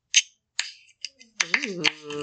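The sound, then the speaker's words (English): A can of orange-flavored sparkling water being cracked open: a few sharp, bright clicks and short fizzy bursts from the tab, followed by a person's voiced exclamation rising and falling. “I'm gonna open a fizzy water.”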